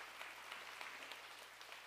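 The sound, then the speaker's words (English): An audience claps steadily for a couple of seconds, a soft, dense patter of many hands that stays fairly even throughout, with no voices. “He says, you can clap for that.”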